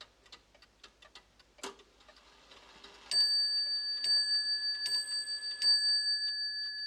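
Numerous clocks inside a manor tick out of step in a dense, uneven clatter, then a bright bell-like chime rings out several times over the ticking, clear.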